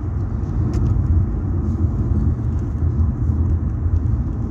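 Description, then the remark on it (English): A car rattles while driving, heard from inside as a steady, loud low rumble of road and engine noise with faint, scattered clicks above it and no talking. “This rattling of my car ain't helping no poopies.”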